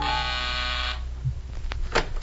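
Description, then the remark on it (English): A gentle door buzzer at someone's door sounds one steady, rich harmonic buzz for about a second, then cuts off, followed by soft rustling and a few sharp clicks. “A gentle buzzing at my door.”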